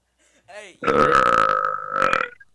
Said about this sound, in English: Hey. Rude. That was the second virtual burp we've had.